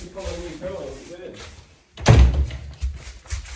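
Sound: door being shut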